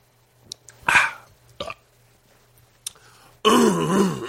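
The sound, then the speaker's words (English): Someone clears their throat: two short raspy bursts and a click, then a louder, longer gravelly rumble to finish. “I got to clear my throat.”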